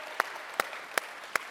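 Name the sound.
audience applause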